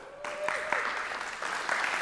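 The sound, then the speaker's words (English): An audience at North Star Church claps together in praise of the Lord, a dense, steady burst of applause, many hands overlapping into a bright, continuous patter that swells slightly toward the end, with faint voices mixed in. “Praise the Lord with clapping.”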